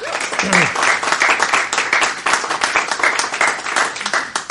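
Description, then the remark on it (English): Steady, dense applause from a large audience at Logos Live welcoming a guest, a continuous wash of many hands clapping at an even loudness with a brief vocal sound near the start. “It's very good to be here with such a huge audience of enthusiastic applauders.”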